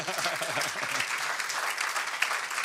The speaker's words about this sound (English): I want you to give these musicians a hand clap of praise.